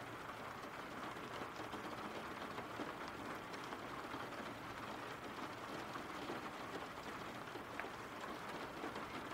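Steady rain falls without a break, a dense, even hiss of drops spread across the range with constant loudness and no voices.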